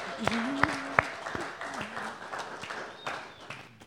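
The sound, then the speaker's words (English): An audience applauds the worship team steadily, a dense wash of many hands clapping at once, with a few louder individual claps standing out over the first second and a faint voice murmuring underneath. “Can we put our hands together for the worship team, please?”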